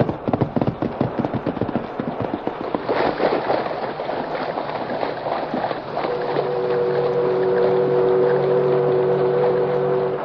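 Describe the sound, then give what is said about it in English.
A white horse with a man in the saddle plunges splashing into a deep, swirling river with a strong current: a burst of choppy splashes gives way to loud, steady rushing water, with a low droning engine-like tone rising underneath near the end. “The river was deep and the current was strong. Water swirled and foamed about the white horse and the man in the saddle.”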